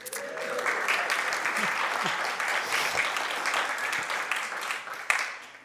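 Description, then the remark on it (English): An audience applauds steadily after hearing that a couple has been married for 35 years, a dense wash of many hands clapping at even volume for several seconds, with a faint murmur of voices underneath and a slight sharp accent near the end. “Was that personal applause or was that?”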